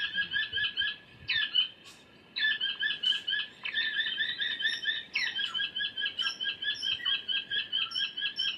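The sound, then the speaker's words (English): Bird calls played back over a sound system set up by a mist net along a track to draw birds in: rapid, rhythmic trills and chirps repeat in steady loud bursts, with a brief pause early on and no talking. “With the sound system, it will draw the birds in, and they'll try and hop from one side of the track to the other, and we'll play some calls and see what's around.”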